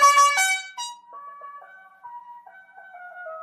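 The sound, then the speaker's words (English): A car's horn, replaced through a selectable horn-sound feature, plays a recorded goat bleat. It is a harsh, buzzy burst lasting under a second, followed by thinner sustained electronic tones that waver in pitch. No one speaks. “And I can actually replace the horn with this. So let me just play the sound real quick.”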